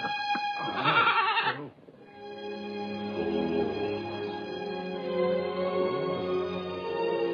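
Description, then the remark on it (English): A goat bleats loudly, a wavering nasal cry in the first two seconds, followed by a longer, drawn-out bleat that warbles on for several seconds. “What that goat needs is a good singing too.”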